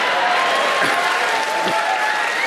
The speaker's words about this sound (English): Round of applause